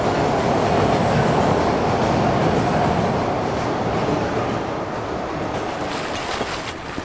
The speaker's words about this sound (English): This train is not stopping at this station. This train is not stopping at this station.